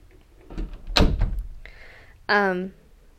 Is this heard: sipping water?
no